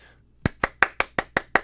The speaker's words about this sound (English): That's me clapping. I'm patting myself on the back.